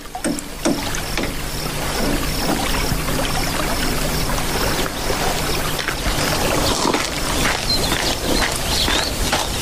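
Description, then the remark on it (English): Steady sloshing and splashing of water as someone wades through an icy-cold river, with irregular splashes from each step and no voices. “See how deep the river is.”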